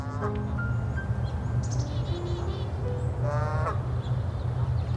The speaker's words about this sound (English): We went back out to Sapsucker Woods to listen to the birds